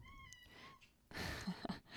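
domestic cat meowing

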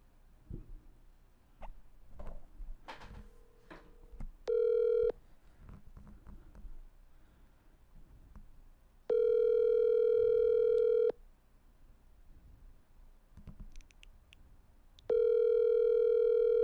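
phone call ringing

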